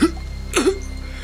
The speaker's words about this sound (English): And you can see the gauntness of this man kind of return to just the wrinkles of an old man, and he coughs to life.